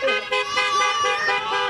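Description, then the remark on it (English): Several car horns honk at once in a steady, overlapping, loud blare, with pitches shifting slightly as the honking continues without a break, from a parade of neighbors' cars outside a home in a show of support. “Children drew signs of support with chalk, and then came the parade of cars.”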